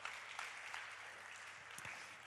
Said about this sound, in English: Ah, okay. Round of applause. Thank you, guys.